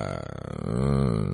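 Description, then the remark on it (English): A single low burp, starting with a rough rattle and swelling into a longer voiced belch that fades briefly at the end. No talking over it. “Oh, burped. Sorry. That's gross.”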